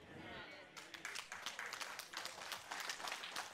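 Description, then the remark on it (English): Quiet, polite golf-clap applause: a small crowd's soft, scattered clapping that starts after a brief hush and continues steadily and evenly without cheering. “That's like just a fuzz over a golf clap.”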